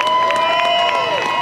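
A steady wash of crowd noise with scattered claps and cheers as hot air balloons lift off one by one, fairly loud and continuous, with a faint sustained tone running underneath throughout.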